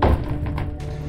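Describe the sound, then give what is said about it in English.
One dull, heavy knock on a door lands at the start, a single low thunk that quickly fades into a murky, lingering background rumble with no voices. “A knock sounded on the door. A single, solitary rap that sent shivers down my spine.”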